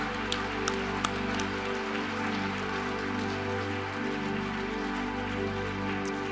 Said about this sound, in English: Hallelujah. Clap for him. The King.